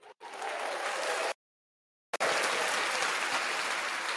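Dense applause from an audience, loud and close, breaks off abruptly into about a second of silence, then resumes just as strongly and continues steadily.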